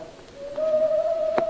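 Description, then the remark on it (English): An owl hoots from a tree right outside the window in a long, steady, low-pitched call that holds one note for over a second, clear, with a soft tap near the end. “That's not me snoring, that's an owl.”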